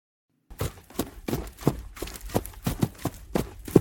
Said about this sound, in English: The big hoofs of a half dozen draft horses. The sight of those barrels surging forward.